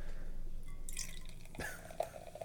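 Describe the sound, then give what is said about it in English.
A fizzy drink is poured, with soft crackling fizz and a few small drip-like plinks near the end. Quiet and brief, with no one talking. “So the bubbles are very different in this one.”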